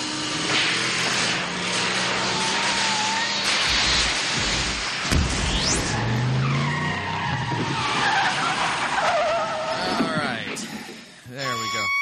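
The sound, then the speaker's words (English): A DeLorean's engine roars and climbs in pitch as it accelerates toward 88 miles an hour, with loud, sustained tire squeals sweeping up and down over a dense rumbling wash that cuts off abruptly near the end. “All right, let's take the DeLorean out. Let's get up to 88 miles an hour, and we'll head back in time.”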